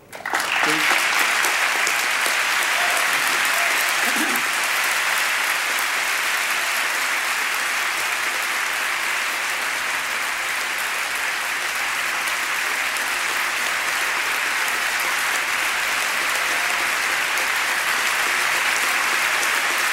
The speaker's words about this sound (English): applaud both his public service and his extraordinary personal heroism.